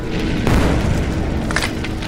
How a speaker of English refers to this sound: So that is 14 radiant damage. The corpse explodes.